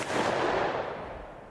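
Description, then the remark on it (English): A single muffled pistol gunshot, fired to break a rope, a dull, heavy boom that rings out and slowly fades over about a second and a half, heard on its own without voices. “I can reach them, but if the water has gotten into the cartridges... There is a muffled explosion, and...”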